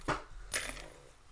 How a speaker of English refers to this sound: Well, I just broke the window